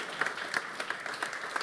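A crowd applauds steadily, many hands clapping in a dense, even patter with a few sharper claps standing out, fairly quiet overall and without any talking.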